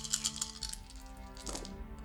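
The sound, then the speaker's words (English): Six dice are rolled for a game check, clattering onto a hard surface in a quick burst of bright clicks and taps followed by a softer rattle as they settle, fairly quiet. “Alright, six dice. Now, let's please have a good roll on an actually useful check.”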